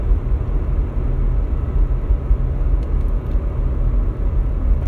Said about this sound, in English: Look at all this fucking traffic.